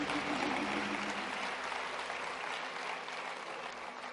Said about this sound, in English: Let's give our choir hand clap.